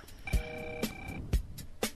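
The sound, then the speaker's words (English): A Skype incoming-call alert: a short electronic tone holding steady for about a second, with several sharp, thumping clicks scattered around it and no voices. “I forgot to turn sounds off before the show started. Oh, yeah, because, you've been getting Skype calls in.”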